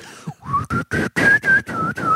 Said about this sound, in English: Here's the downside if that's true. Most people can't whistle well.